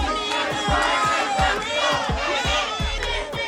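protest crowd shouting

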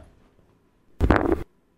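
fart

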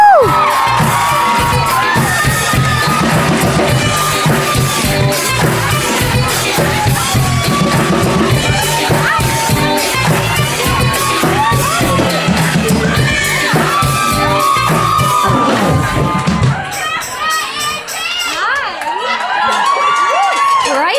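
crowd cheering and whooping

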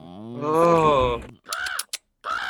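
bird cawing

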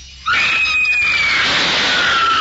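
high-pitched scream

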